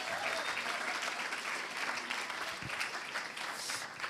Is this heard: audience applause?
yes